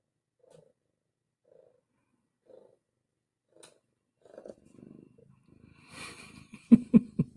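A cat purring: a few soft, evenly spaced rumbles at first, then a louder, steady pulsing purr toward the end, with no voices.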